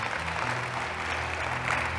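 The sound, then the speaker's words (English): An audience claps their hands in a steady, dense wash of applause that holds evenly for the whole two seconds, with a faint low hum underneath. “You can clap your hands.”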